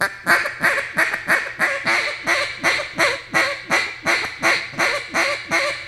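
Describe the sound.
A duck hiccup call: a steady series of short, raspy duck quacks, about twelve evenly spaced clipped calls repeating in a brisk, loud rhythm with no talking.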